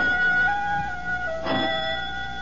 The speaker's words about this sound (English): Only the doorbell.